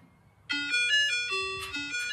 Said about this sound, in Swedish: Jag spelade upp glassbilsljudet för barnen. Och sprang ut direkt. Vad väntar ni på? Hallå, den brukar stanna här. Den stannade inte nu. Vi hörde ju glassbilen.